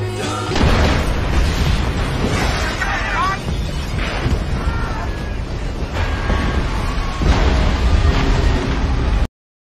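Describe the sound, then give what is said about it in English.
A massive explosion in a film: a ferry in New Orleans carrying about 450 people is blown up in a terrorist attack. A loud blast, then a thick roaring rumble of fire and debris sustains for nearly ten seconds, with indistinct voices faintly caught in the din. “It is ginormous explosion.”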